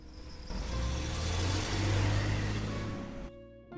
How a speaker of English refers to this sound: Around the same time, in Worcesterfield, Armin Meiwes pulled out of his driveway.